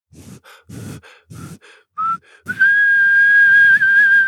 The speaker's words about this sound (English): The little porcupine tightened her lips and whistled for the first time.